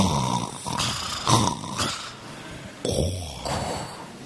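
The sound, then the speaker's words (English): Someone imitates a man snoring as he sleeps in a boat: a series of rough, growly snorts and rasping breaths repeated in quick bursts, with no talking in between. “And I'm sure he was snoring.”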